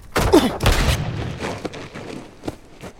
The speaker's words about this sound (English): Toppling backward over a chair, he lands with a thud as his gun goes off again, putting a hole in the fabric and deafening everyone inside.